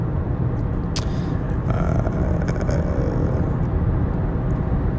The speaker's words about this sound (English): And if you're wondering what that background hum is, it's the car tires driving down the road. I am driving to work.